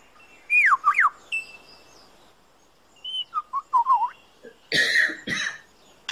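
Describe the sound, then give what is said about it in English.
A bird in the forest, able to imitate the calls of at least 20 species, sings swooping whistled notes and chirps, then mimics a camera shutter with two loud, sharp, rattling mechanical clicks near the end. “He also, in his attempt to outsing his rivals, incorporates other sounds that he hears in the forest. That was a camera shutter.”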